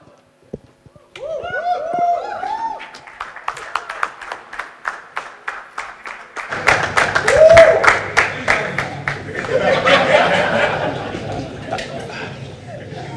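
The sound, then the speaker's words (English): A brief voice gives way to steady, rhythmic applause from a large audience clapping before the sermon is preached, the clapping swelling louder and denser midway, with crowd voices murmuring and cheering underneath. “I've not yet preached, they are clapping.”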